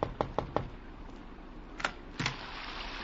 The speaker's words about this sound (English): I thought it was his knock that I heard on my door.